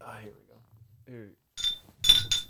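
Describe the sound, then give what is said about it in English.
A brief murmur of voices, then several bright, ringing clinks of glasses knocking together in a toast, three quick taps with a short metallic shimmer after each. “All right, boys. Cheers to the dead guy.”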